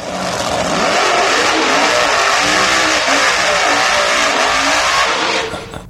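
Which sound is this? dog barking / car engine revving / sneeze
car engine revving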